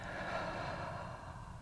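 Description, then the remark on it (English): A long, steady breath pushed out slowly during a guided breathing exercise, a soft airy rush that holds evenly for over a second, quiet, with no voices. “And out.”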